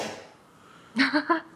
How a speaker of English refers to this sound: Okay. My dog just scoffed at that one.